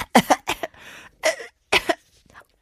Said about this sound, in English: Coughing. Oh. 여보, 괜찮아? 감기 걸렸어. Oh, sweetheart, are you okay? Did you catch a cold? 아, 그게 아니라. 요즘 먼지가 너무 심해서... No, no, it's because of the fine dust.